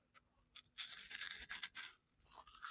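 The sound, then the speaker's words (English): Crunching of a Cheeto cheese puff snack being eaten: a few small crackles, then a dense run of crisp, crackly chewing noises, pausing briefly before resuming, fairly quiet with no talking. “It's coming into my mouth now. Listen to the crunch, mate.”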